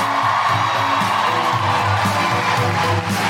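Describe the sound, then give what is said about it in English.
Loud, sustained crowd applause in Sydney as Cal Wilson is introduced, mixed with cheering and whoops, a dense wash of clapping that stays steady throughout with shouts rising above it. “Keep that applause going for the one, the only, the legendary, my favourite, Cal Wilson.”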